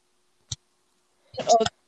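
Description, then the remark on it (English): A single sharp peck as chickens peck at a spot on the outside of their enclosure, tapping once against a hard surface, followed a moment later by a brief, louder burst that sounds like a voice or a chicken vocalizing. “There's a spot of something on the outside of the thing that they're in, and they are trying to peck it through the grass.”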